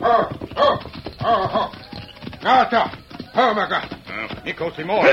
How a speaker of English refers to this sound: Me call again. So him come here. I hear a horse coming this way. Must be the chief.